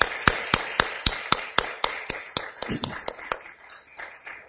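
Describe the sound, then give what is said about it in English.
An audience applauds mothers with sharp, evenly paced claps in a steady rhythm, backed by a softer wash of scattered clapping that grows looser and quieter toward the end. “In fact, let's just applaud for the mothers this real moment.”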